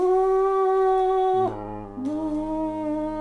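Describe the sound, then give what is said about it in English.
A voice imitates a horn with a sustained, buzzing tone that holds steady, then drops lower in pitch, pauses briefly, and resumes slightly higher, loud throughout with no other talk. “What's a horn sound like?”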